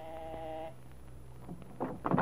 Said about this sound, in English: Some little time had passed before the door buzzer rang. A long, impatient ring.